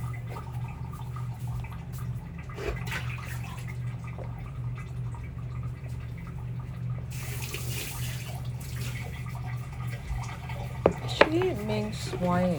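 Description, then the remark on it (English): A cup that held tea being rinsed under a running tap, water gushing steadily for a few seconds, followed by light clinks of the cup against the sink, with a low hum and faint voices behind. “I'm gonna wash the cup now because the tea was in it.”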